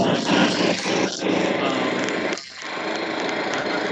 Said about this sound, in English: Is that another lawnmower behind you there